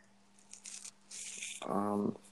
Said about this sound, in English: Like a rustling noise. Yeah, like a rustling noise.